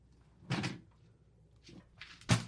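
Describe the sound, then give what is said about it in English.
A man grabs a hat off a little hanger on his door, making a few quick rattles and knocks against the wood, with a sharper clack near the end. “He just grabbed a hat off the little hanger on his door.”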